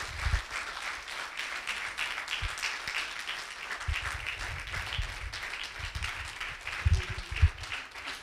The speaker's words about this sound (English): You need to give honor today, a hand clap of praise for your pastor.